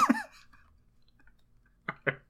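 Crunchy munching on a snack: a louder burst of chewing at the start, a quiet pause, then two quick crisp bites near the end.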